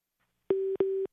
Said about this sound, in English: it's call waiting again. Hang on one second.